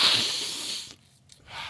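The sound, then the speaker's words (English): A person sniffles from allergies: an airy nasal sniff lasting almost a second, then a brief pause and a second shorter sniff. No one speaks. “So, anyhow, God, I'm sniffling a lot today, I've noticed.”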